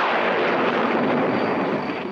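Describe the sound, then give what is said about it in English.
A thunder sound effect: a loud, steady, broad rumbling roar that fills the whole couple of seconds without a sharp crack, with no voices over it. “Maybe we'll get a little thunder.”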